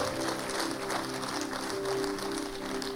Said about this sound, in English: We have section 4. Do we have any visitors visiting with us? Come on, amen. Amen. Clap it up for section 4.